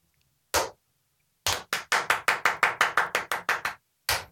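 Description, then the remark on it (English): Sharp hand claps for syncing a camera, with no talking: a single clap, a short pause, then a fast even run of about a dozen loud claps, and one final clap. “Let's get a clap.”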